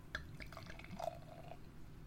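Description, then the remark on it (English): Bottled beer pours into a glass, a steady gurgling splash with small bubbly drips and glassy ringing tones running through the whole short stretch, no voices. “Right, I'm going to pour it, as usual.”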